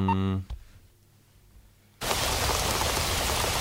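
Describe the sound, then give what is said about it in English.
A brief voice-like tone and a short quiet stretch give way to a sudden, steady downpour of rainforest rain, a dense, loud hiss of drops that continues unbroken to the end. “Rainy a rainforest. Day. Yeah. Rain.”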